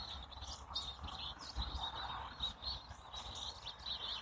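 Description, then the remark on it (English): Grosbeaks sing in a steady, overlapping chorus of warbled phrases and chirps from a big cottonwood tree in a neighbor's yard across the street, on a morning in the desert after heavy overnight rain, fairly soft over quiet outdoor ambience with no one talking. “It's mostly the grosbeaks up in the big cottonwood tree in the neighbor's house yard across the street.”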